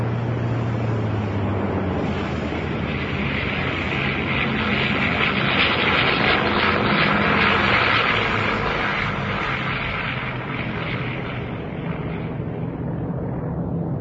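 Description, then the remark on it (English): A loud, steady propeller plane engine roar with a throbbing drone fills the whole stretch during takeoff, swelling slightly midway as if powering up, with no voices over it. “After the initial takeoff, I move forward into the nose of the plane and put my parachute on my chair.”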